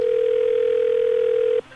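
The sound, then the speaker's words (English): A steady telephone ringing tone hums for about a second and a half, then cuts off abruptly, heard through the earpiece as an unanswered call waits to connect. No one speaks. “Why don't they answer the dang phone?”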